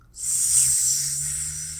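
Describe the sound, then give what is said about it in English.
Two voices imitate a snake together, producing a steady, sustained hiss that starts abruptly and holds for almost two seconds with a faint low hum beneath it. “We both made snake sounds at the same time.”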